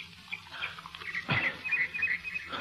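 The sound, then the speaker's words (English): Water is poured with a brief splashing gush, followed by soft gulping sounds of a wounded man drinking, all over faint background noise with no talking. “Here now. Drink.”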